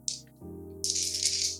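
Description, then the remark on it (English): Dice are rolled for a contested roll, sleight of hand versus spot hidden, clattering and rattling in a brief bright burst followed by a longer rolling rattle, over a steady low musical hum with no talking. “That'll be sleight of hand versus spot hidden. It's a contested roll.”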